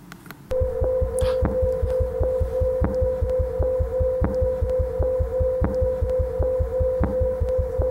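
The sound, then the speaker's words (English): A sonified eclipsing binary star: fast, steady bass thumping representing the eclipses under a sustained mid-pitched whistling tone representing activity inside the star, with faint clicks recurring at a slower regular beat. It starts abruptly and continues evenly, with no talking. “So the bass thumping is really the eclipses.”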